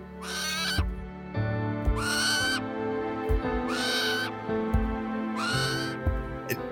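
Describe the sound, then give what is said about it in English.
A large owl with about a five-foot wingspan, flying right past the hood of a car, calls four times at steady intervals, each cry harsh and drawn out, fairly loud over a constant low rumble with no voices. “So as I sat there waiting for AAA to come and rescue me, an owl flew right past the hood of my car.”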